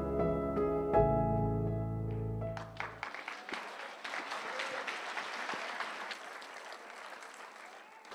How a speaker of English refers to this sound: Come on, once again, let's give God a clap of praise. Give God a clap of praise.